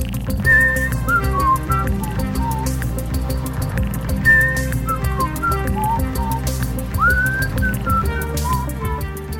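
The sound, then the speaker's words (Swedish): Someone whistles a wandering melody of sustained and sliding notes, clear, carrying on for several phrases over a steady, dense low background. “jag vet inte vad den heter, men jag gissar att jag visslar den i rätt tonart.”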